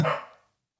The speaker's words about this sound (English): Yeah, she really got to learn how to keep down. Sandy, shut up. Shut up, Sandy. Stop barking.